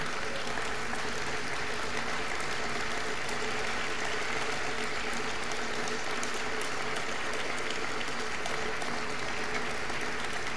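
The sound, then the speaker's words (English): A large crowd applauds and cheers continuously at Donald Trump's nomination of Amy Coney Barrett to succeed Ruth Bader Ginsburg, September 26, 2020, a dense wash of clapping and excited voices that stays loud and steady throughout without any clear speech. “Lots of cheering. Everyone is excited, as well as we should be.”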